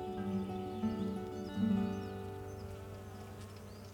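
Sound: bees buzzing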